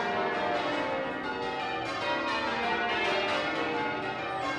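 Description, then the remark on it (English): Twelve church bells ring in steady rounds, one after another in a descending cascade from the highest note to the lowest, their tones overlapping into a sustained, shimmering hum that grows with each round. Loud and continuous, with no voices. “they started off ringing all 12 bells from the highest note to the lowest. And at this point, they're just ringing them in rounds”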